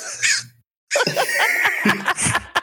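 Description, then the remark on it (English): A person imitates crow caws: one short, raspy squawk, a brief pause, then a longer run of harsh, rough cawing calls. “I'd like to make some crow sounds while you guys talk about it.”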